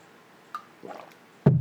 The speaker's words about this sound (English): I gotta get a drink of water. Hold on a second.